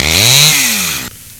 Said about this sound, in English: Chainsaw.